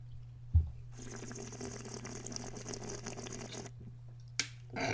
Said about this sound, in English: I'm ripping a fat one, like, right as we speak. Let me get a bong real quick.